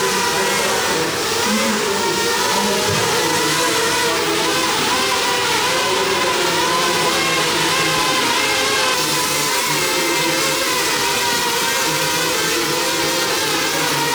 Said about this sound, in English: But we have live drones going on behind me here in the net, and we'll be getting some footage of that as well.